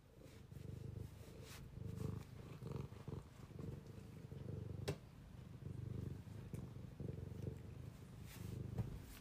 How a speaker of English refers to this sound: Sometimes the cat will bite me as it's purring, which maybe it's a affectionate bite.